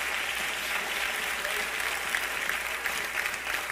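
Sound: audience clapping hands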